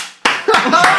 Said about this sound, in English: We'll cut out the clapping.